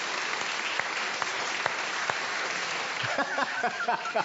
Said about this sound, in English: It's okay, so can we have a clap for this, if you think this is the best?